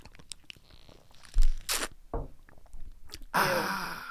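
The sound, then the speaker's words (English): Wet squelching and sucking as applesauce is gulped from a squeeze pouch, with a few swallows and a crinkly burst of the pouch at the end. Nobody speaks. “That was like 80% of that in one gulp.”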